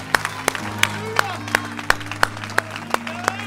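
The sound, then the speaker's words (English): A church audience claps hands together in a steady, even rhythm, sharp unified claps about three per second, over a sustained low musical drone and faint crowd voices. “Let's clap our hands to the King of Kings and the Lord of Lords.”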